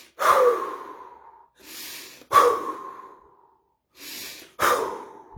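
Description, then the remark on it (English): Slow, deep breathing as an exercise to release emotions: three cycles, each a soft drawn-in inhale followed by a louder, sighing exhale that trails off gradually. No talking, just the breaths in a steady rhythm. “Okay, so this is how we release our emotions when we are parenting ourselves, and also with deep breathing.”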